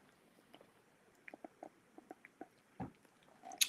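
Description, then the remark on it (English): Someone quietly sips a drink: a string of small wet mouth clicks and a soft gulp, then a brief rustle at the end, with no talking. “Sorry. Yeah, sip something.”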